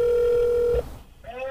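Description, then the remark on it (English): A steady electronic ringback tone hums for under a second, then cuts off as the call connects and a voice starts speaking. “So here's a 20-minute phone call we had where we just talk epilepsy.”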